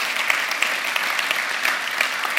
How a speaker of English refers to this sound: Amen? So let's just give him a clap before we go any further. Thank you, Lord.